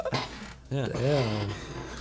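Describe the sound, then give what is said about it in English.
A chair squeaks in a drawn-out, whining creak that bends up and then down in pitch for nearly a second, preceded by a short rough rubbing scrape. “We're gonna have to get new chairs. I know, for real, these really squeak.”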